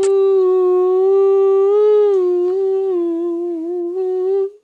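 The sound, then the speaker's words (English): A voice imitates a spacecraft's eerie tones with one loud, sustained, buzzy mid-pitched note that wavers slightly and dips before cutting off abruptly after about four and a half seconds. “It was making some very quiet mechanical sounds along with some unusual tones.”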